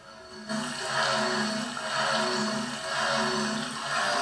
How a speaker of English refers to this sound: Because even the water sounds, I put in some scripted water sounds. They are very loud.